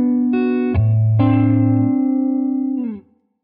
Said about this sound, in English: So the way this amp is set right now, it takes the reverb really well.